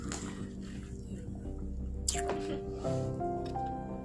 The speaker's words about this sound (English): Sips tea.